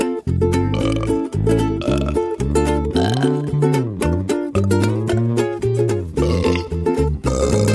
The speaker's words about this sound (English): I like to burp after some libation with lots of carbonation. I think it's cause for celebration. Yeah, I like to burp in social situations with much reverberation, causing others considerable consternation.